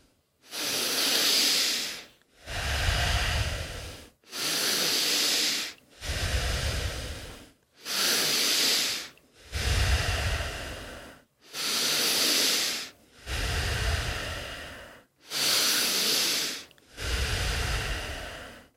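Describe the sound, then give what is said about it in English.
Deep, rhythmic breathing exercise, ten slow breaths alternating between airy inhales and fuller, lower exhales, each separated by a brief pause, with no talking. “Fully in and out. And as you're breathing at home, breathing into the belly, then the chest and out.”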